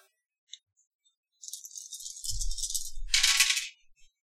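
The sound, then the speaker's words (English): Six dice rattle in a cup or hand for a couple of seconds, then clatter and tumble onto a table with a bright burst before settling, rolled during a game. Fairly loud, with no talking. “It'll be six dice.”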